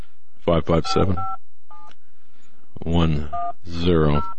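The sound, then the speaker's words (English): Touch-tone telephone dialing: a few short dual-tone beeps spaced irregularly, heard through a speakerphone and interleaved with bursts of muffled voice sound. “Old-fashioned way, speaker and telephone.”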